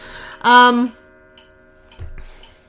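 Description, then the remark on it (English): A clock running 20 minutes fast sounds the hour for nine o'clock, chiming once, a loud bright strike that rings on with a long, slowly fading hum, and a soft low thump sounds near the end. “So, and there goes the clock again. 20 minutes fast, and it's going to tell me it's 9 o'clock.”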